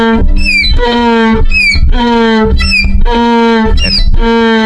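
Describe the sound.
A violin mimics a donkey's bray, alternating a high sliding squeal with a low sustained note, repeated about four times in a steady, loud hee-haw rhythm with no talking.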